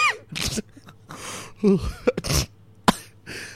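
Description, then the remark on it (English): Someone sneezes several times in quick succession, each a sharp, breathy burst, with short gasping inhales and throaty sounds between them. “Oh, you're sneezing now”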